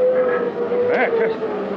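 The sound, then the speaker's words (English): A steady, unbroken emergency alarm tone drones at one pitch throughout, fairly loud, during a radiation blast, while people talk over it. “What's the alarm?”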